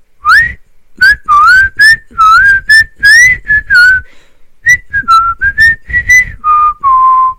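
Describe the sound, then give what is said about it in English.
Someone whistles a tune, a clear run of short and held notes rising and falling, with a brief pause partway through before the melody resumes. “We all heard whistling.”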